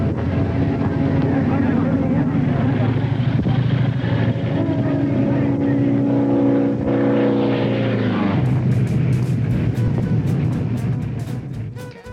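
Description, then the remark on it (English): The supercharged Pratt & Whitney engine of Jimmy Doolittle's GBR-1 racing plane, making over 850 horsepower, roars at full throttle in a loud, steady, buzzing drone during a victory low pass across the finish line, its pitch sliding lower, then holding a deeper growl. “Doolittle marked his victory with a low pass at full throttle across the finish line.”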